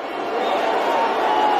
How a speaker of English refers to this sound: So he got booed terribly. Just because a couple negative Nancys decide to boo doesn't mean that the world doesn't love you, Elon.